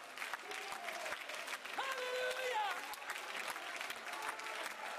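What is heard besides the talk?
audience clapping hands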